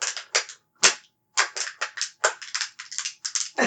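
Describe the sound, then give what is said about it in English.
A sealed, airtight plastic water bottle being punctured with a pen, heard as a quick run of about a dozen loud, sharp pops and cracks in an uneven rhythm, with a short pause early on and no talking. “Which, if you've ever shoved a pen into a plastic water bottle that's airtight... If you seal it up, it's fucking loud. It's gonna pop.”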